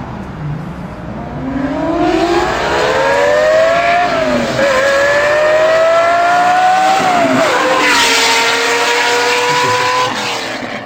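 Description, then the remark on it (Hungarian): A loud Lamborghini Countach sports car engine revs, climbing in pitch through a couple of gear changes as it drives past, with a steady roar and no talking. “Tehát, hogyha valaki hozzáképzeli a Countacht, akkor az együtt ez többet ad.”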